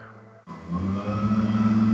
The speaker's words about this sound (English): And the leaf blower gets closer.